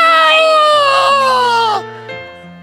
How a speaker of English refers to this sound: I was about 100 yards offshore in the beautiful Hawaii, and the sun was setting. I'm out in the middle of the... I just put my hands up and begin to just scream.